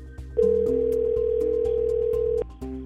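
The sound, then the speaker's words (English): A single sustained electronic telephone ring tone holds steady for about two seconds, clear, over a soft rhythmic low beat, with no one speaking. “The phone's going to ring again.”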